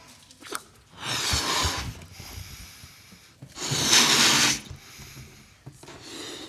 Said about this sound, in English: Now let's see what happens when we take that peer pressure away and we blow this balloon up.